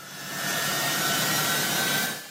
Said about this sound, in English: And then this startling image, one of the US's largest cargo planes taxiing, laden with Afghans who did not want to be left behind.